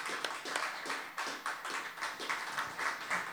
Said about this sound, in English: A little round of applause, please.